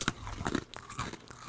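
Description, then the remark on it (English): Someone crunches into a graham cracker: a handful of crisp, brittle bites and chews in an uneven rhythm, fairly quiet, with no voices over them. “It's a Graham fucking Graham cracker. Yeah, it's a Graham cracker.”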